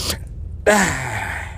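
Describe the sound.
A voice imitates the hard nasal sniff of snorting an eight ball of cocaine: a short breathy puff, then one sudden loud, harsh snort of rushing air with a falling vocal tone that trails off over about a second.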